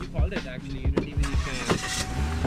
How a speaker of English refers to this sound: I've just hopped into a car